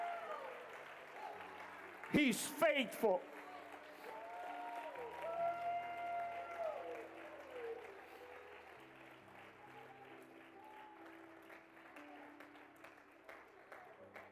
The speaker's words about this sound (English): Come on, you can clap louder than that. He's faithful.